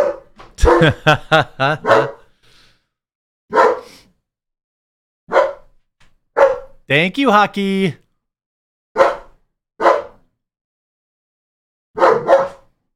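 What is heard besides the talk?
dog barking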